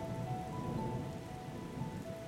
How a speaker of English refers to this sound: for the first time in a while, you hear without having caused it yourself, and dark clouds start to gather, and it just starts raining.